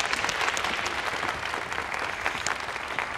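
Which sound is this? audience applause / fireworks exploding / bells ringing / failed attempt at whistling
audience applause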